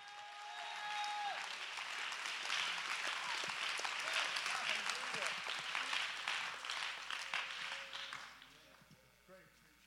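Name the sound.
audience clapping and cheering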